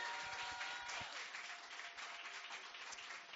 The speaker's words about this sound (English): Give Jesus another mighty hand clap, everybody.